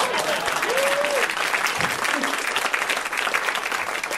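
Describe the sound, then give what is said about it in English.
Steady audience applause at a stand-up comedy show fills the whole stretch, a dense, even patter of many hands clapping at constant loudness, with a brief whistle-like tone and faint voices mixed in. “You should clap now.”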